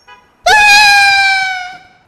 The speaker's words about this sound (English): With their last hope swept away, our grown men of action shriek with a sound not unlike 12-year-old little girls.